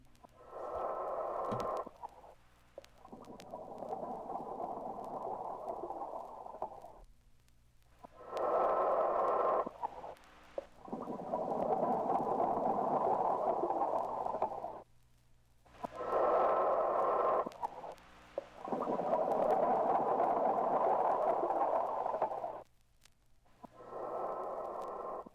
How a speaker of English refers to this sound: The sound you are hearing is a relatively new one. It's the sound of man breathing underwater, exploring the depths of the sea.